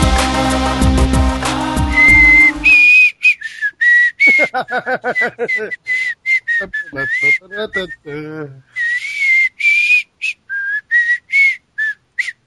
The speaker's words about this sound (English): That was just me whistling to myself, just a tune that I made up.